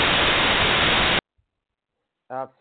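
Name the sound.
radio interference static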